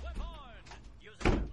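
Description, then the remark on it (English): A door slams shut once with a sharp, loud thud near the end, preceded by a moment of indistinct voices and shuffling. “Well, then go lock the door and close it.”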